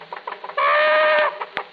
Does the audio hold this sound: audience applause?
no